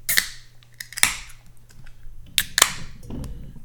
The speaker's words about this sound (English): Well, I'm about to pour myself a Nitro Merlin Milk Stout.